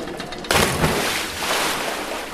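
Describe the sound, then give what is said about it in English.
After a moment of low watery hiss, a big cannonball splash into a pool erupts suddenly and loudly, then gives way to about two seconds of churning, sloshing water. “For me, nothing beats swimming around on a hot summer day, splashing with friends, or if the water is deep enough, cannonball!”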